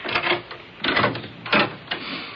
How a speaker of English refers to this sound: Now, let me open the door, and don't you say a word.